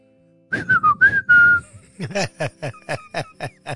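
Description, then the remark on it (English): A person attempts a Spanish derisive jeering whistle: a short, wavering, slightly breathy tone that dips and rises, followed by a rapid run of rhythmic breathy bursts. “I thought I was going to get slugged in there because I was trying to do that Spanish derisive whistle.”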